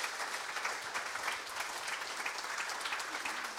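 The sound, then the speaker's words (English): A round of applause from a crowd for guests Ben Siegrist, Amy Gallacher and Matthew Anderson at an evening event, dense steady clapping that holds at an even level throughout with no voices standing out. “Everybody, give up a big round of applause for Ben Siegrist, Amy Gallacher and Matthew Anderson.”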